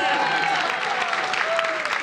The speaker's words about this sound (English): I can't. Oh, clap for me.